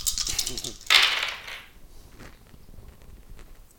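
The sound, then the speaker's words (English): A handful of dice, a dice pool rolled for a melee attack in a tabletop role-playing game, clatters and rattles across a table in a quick burst of clicks, loudest near the start, then settles into scattered faint ticks with soft voices murmuring in the background. “All my dice.”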